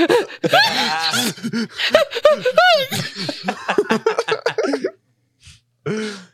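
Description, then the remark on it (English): A voice imitates strained, labored breathing for several seconds with rasping, groaning pants and wavering pitch. It is fairly loud, then trails off and ends with a short breathy burst after a pause. “Your breathing is constantly just like.”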